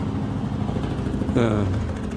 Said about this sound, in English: Now we got a helicopter going overhead. Can you hear that? What else is going to happen today?